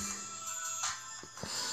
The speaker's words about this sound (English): My alarm just went off. I don't know if the phone's still recording.